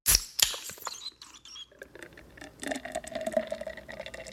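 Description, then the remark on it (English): A recording studio computer in South Minneapolis, left on all day, runs, its fan and drives making irregular clicks and ticks over a low, steady hum of machine noise, with a louder burst of clatter at the start and busy chattering after it. “Hear that fan and stuff? It's like my computer drives and stuff.”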